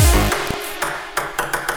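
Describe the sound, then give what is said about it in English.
A ping pong ball sample drenched in reverb, bouncing in a quick, uneven series of bright clicks whose washy tails blur together, following a brief low tone at the start. “I love it's like a ping pong ball sample, innit, with a load of reverb on it.”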